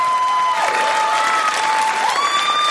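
A crowd applauds loudly and steadily as the host's girlfriend is brought out onstage at a comedy show, a dense wash of clapping that holds throughout with no talking, while a thin, sustained whistle-like tone runs beneath it.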